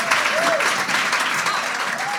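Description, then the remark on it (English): A crowd applauds steadily, a dense, even patter of many hands clapping at a constant loud level, with a few faint whistles or cheers rising briefly through it. “So let's give a big round of applause.”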